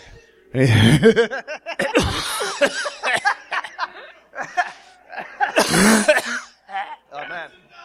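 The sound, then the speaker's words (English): Several loud coughing bursts mixed with laughter and throat-clearing sounds, coming in irregular fits with short pauses between them. “Sometimes when you get really jacked up, you know, you can cough in the glory.”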